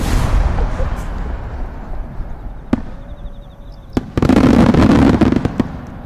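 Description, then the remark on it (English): Fireworks on Bonfire Night bang and crackle against a low rumbling background, with a few sharp isolated cracks followed by a denser burst of popping and fizzing toward the end. “Lockdown. In Bonfire Night Town.”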